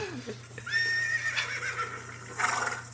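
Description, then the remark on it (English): A horse whinnies loudly, a long harmonic neigh that rises and trembles before fading, followed by a rougher snorting burst, over a steady low hum. “Get the horse.”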